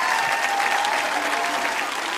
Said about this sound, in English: Clap, clap, clap, clap, clap, clap, clap, clap, clap, clap, clap, come on.